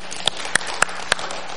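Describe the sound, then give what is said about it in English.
A handful of sharp claps from a church audience at Community Covenant Church land at an even, steady pace, about four in under two seconds, standing out over a constant hiss of background noise from the gathered group. “Yes, clap.”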